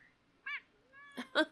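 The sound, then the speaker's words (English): A female kitten meows about three times in quick succession. The calls are short and high-pitched, the last two louder and more urgent, with no talking. “And then I thought, you know, I'm not getting any younger, so she's probably my last kitten.”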